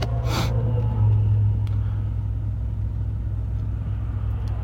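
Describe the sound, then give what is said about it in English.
A steady low engine rumble fills the whole clip, with a brief whooshing rush near the start as a car passes on the road, heard while waiting in a driveway for the remaining cars to pass before pulling out. “I wait for a few remaining cars to pass before I pull out the driveway.”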